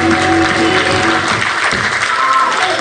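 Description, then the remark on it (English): An audience claps their hands in a loud, dense burst of applause that holds steady for about three seconds, with sustained musical tones humming underneath. “Clap your hands if you can feel what I'm trying to say today.”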